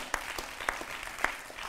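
A crowd claps steadily, a dense wash of many hands with a few sharper, louder claps standing out, moderately loud and sustained throughout, as the audience gives a family another round of applause.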